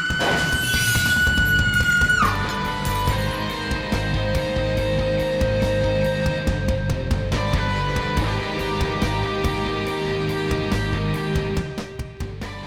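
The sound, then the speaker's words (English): Glass shatters loudly with a burst of high crackling at the start, then sustained ringing, resonant tones hang on with a faint ticking pulse for several seconds, no voices. “And I heard glass breaking.”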